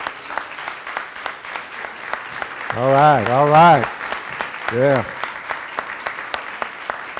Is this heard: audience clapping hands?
yes